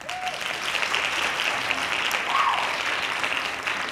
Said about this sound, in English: Black Lives Matter are doing these marches and protests, and there's a lot of the white delegation that's out there protesting and marching too. Hand claps to them.